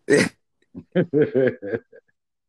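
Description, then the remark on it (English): One sharp, loud sneeze bursts into a phone, followed by a string of short, choppy voiced sounds. “Sniffing and blowing? Yeah, because I sneezed.”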